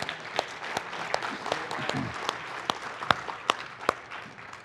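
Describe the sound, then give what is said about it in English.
A crowd applauds with dense, overlapping hand claps, a few sharp individual claps standing out in a fairly steady rhythm, sustained at moderate loudness for several seconds. “Someone clap your hands tonight.”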